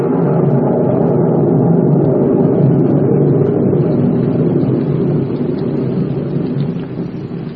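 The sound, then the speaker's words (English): Steady, heavy rain pours down at night on wet ground in a continuous dense hiss with a low rumbling undertone, loud throughout, easing very slightly toward the end. No voices are present. “Not a night to do this job. I'm superstitious about the rain.”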